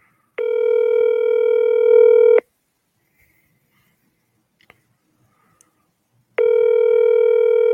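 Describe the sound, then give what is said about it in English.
A phone's ringback tone plays over a speakerphone: two steady, buzzy two-second rings separated by about four seconds of near silence, fairly loud and clear with no one talking. “Can you guys hear the ringing?”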